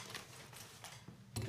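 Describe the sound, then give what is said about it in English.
The resealable metal lid of a Dr Pepper can, first broken open with a key, slides open with a few faint scraping clicks, then finishes with a sharper, louder clack as it settles into place. “And then it slides open.”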